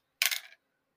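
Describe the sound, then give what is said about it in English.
Dice are rolled across a table during a game, a brief clatter lasting about a third of a second, a quick, fairly crisp rattling burst, then silence. “Go ahead and make your roll. 3 dice.”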